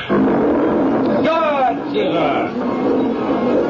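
A lion in a cage growls loudly and continuously for a few seconds, a rough, raspy rumble that swells into a strained, wavering roar partway through before settling back into a gravelly snarl.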